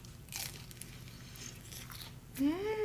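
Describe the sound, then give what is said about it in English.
Crisp, crunchy bites into a fried veggie spring roll from Panda Express, with a few crackly crunches and chewing, ending in a short voiced murmur. “Panda's Express chicken egg roll. So crunchy. So good. Oh. Veggie spring roll.”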